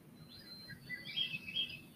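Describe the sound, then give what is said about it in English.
Birds chirp softly, a scatter of thin high tweets and short trills over a low, steady background rumble, with no voices present. “We notice how the birds float around, fly around in their most precious way.”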